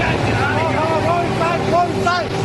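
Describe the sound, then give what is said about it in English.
A speeding tour boat's motor drones steadily, a constant loud roar with wind and water rushing past, as tourists flee a volcanic eruption on New Zealand's White Island; voices shout and talk over it, tour guides urging people to go inside. “Watch the cloud burst across the water towards their speeding boat.”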